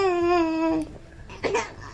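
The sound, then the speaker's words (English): An infant girl babbling in a studio: a drawn-out, high-pitched vocal tone lasting under a second, followed by a shorter warbling coo, fairly loud with no one else talking. “infant daughter is joining us in the studio, so tell us what happened”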